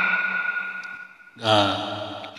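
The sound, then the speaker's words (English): A processed, electronic-sounding voice hums through a microphone with the echo button of a voice-changing device switched on, then swells louder midway into a ringing, smeared vocal tone that trails off with reverberant repeats. “No, it's kind of different with the echo.”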